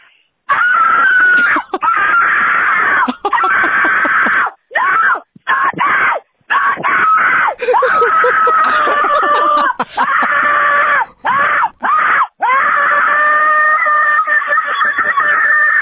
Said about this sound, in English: So I saw this thing trending on TikTok. And it's pretty much how you sound screaming for your life. So I thought I would give it out a try.